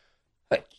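A single sudden, forceful sneeze bursts out after a moment of near silence, loud, then quickly fades with a faint breathy tail.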